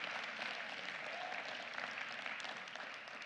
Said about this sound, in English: Can somebody put your hands together this morning and give Jesus a hand clap of praise?